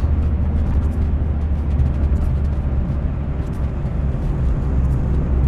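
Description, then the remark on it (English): Steady, dense rumble of Monday morning road traffic, a continuous low drone of engines and tyres with faint higher hiss, fairly loud and unbroken throughout with no one speaking. “Oh, Monday morning traffic.”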